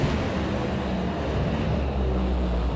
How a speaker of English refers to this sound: The final two cars in the Stampede of Speed hit the gas one more time.